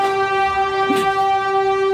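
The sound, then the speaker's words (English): A train horn blares in one loud, steady, unbroken tone for the whole moment, with a low rumble and clatter of the passing train underneath and a brief rushing burst midway. “Train's here! That's the ghost train.”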